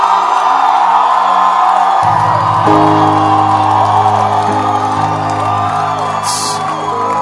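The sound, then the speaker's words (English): A large crowd shouts and cheers loudly and continuously, a dense roar of voices with whoops rising above it, sustained without a break from start to finish. “So, the way you have shouted, it should be the same kind of impact on his birthday when you are blessing him.”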